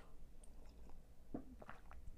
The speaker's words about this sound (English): Let me have a sip of my coffee.